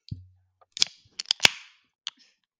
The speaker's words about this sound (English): Get the customary beer on the microphone there. Right. This is from... I'll introduce it this way. It is the Bro Flow from SoPro Brewing, Southern Prohibition Brewing out of Hattiesburg, Mississippi, just a little west and south of here.